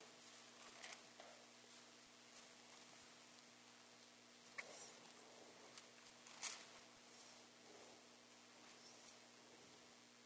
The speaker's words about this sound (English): Go to your right, Galatians, two more verses. Don't you love hearing those pages turn? It's a great sound.